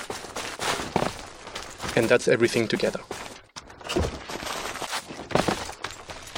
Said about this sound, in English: So this is the maximum outfit. This is called Armor Heavy, when you can hear that there is cloth and leather and a lot of metal clinking, actually, mm-hmm. that goes with the armor.